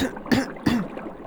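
Two short, harsh coughs in quick succession from someone ill with influenza, fairly loud, followed by a quiet, faintly hissing background with no talking.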